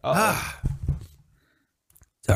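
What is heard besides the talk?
sneeze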